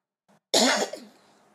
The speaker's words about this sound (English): I've been talking to y'all a little bit while, and my throat is getting a little bit dry now, and I'm about to start coughing. Ran out of water, so let me wrap this on up.